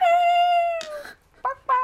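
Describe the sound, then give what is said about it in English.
Chickens calling on their own: one long, drawn-out, slightly falling cry, followed by two short, sharp clucks. No one speaks. “I hope my mic is not catching the chickens because it's kind of annoying. I mean, I hear it, but I kind of like it.”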